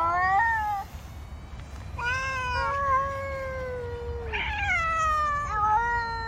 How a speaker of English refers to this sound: It's just kind of like a bunch of angry cats making weird noises at each other. I was wondering if I could rile up my cats.